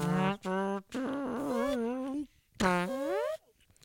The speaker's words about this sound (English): You were farting.